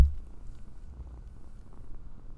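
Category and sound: animal, cat purring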